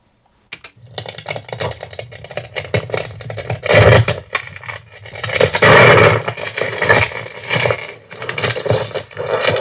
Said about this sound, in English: That's ice breaking. Really? I think if it's played at the right level, it'll be just the right texture and sound that we need to start the floor creaking. I'll add some wood cracks with it, but I think it'll work.